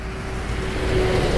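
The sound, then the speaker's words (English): A huge, heavy lorry rumbles past a house, its deep, steady engine drone and low road noise filling the air and swelling slightly as it goes by, making the house shake. “A huge lorry had just passed his house, making it shake as it usually did.”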